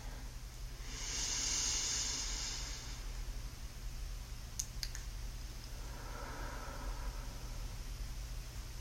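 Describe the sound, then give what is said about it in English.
A person with hands on the stomach takes a long, slow, airy inhale that swells for about two seconds, trying to expand, followed by a faint click and a softer, breathy exhale. It is quiet with no talking. “I'll start by putting my hands on my stomach and taking a deep breath and trying to expand.”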